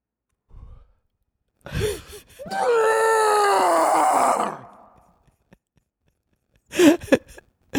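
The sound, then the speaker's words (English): A person imitates a Bigfoot roar: a loud, drawn-out growling howl lasting about two seconds that slides downward in pitch, with short breathy grunts before it and a few sharp breaths afterward. “Give me your best Bigfoot roar.”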